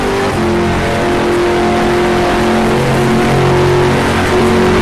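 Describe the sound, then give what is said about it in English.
A loud race car engine roars steadily under full acceleration through a right-hand kink on the Mulsanne straight, its pitch holding high and strained with a dense, continuous mechanical whine throughout. “Coming up into our right-hand kink. Full acceleration there.”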